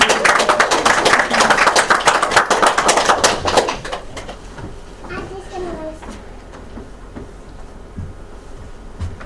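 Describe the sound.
An audience bursts into dense, steady applause for about four seconds, then it stops abruptly, leaving a quieter room with faint murmuring and a distant voice.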